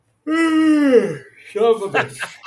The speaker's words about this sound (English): I had just hit record, but I'll edit it out. Maybe I'll forget to edit it out, and then we'll start with a yawn.